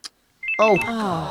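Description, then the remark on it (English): A mobile phone rings: a couple of quick high beeps, then a bright electronic ringtone melody kicks in at a steady, fairly loud level, with no talking over it. “we all said we'd switched our phones off.”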